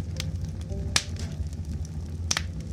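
A few sharp pops and crackles, like a fireplace fire, snap out at irregular moments over a steady, soft low drone of gentle background music.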